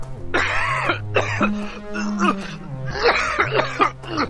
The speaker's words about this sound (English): … cough is getting worse. Let me hear it.